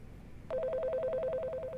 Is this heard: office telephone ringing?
yes